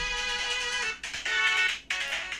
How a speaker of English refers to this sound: There's my ringtone. It's Sonic.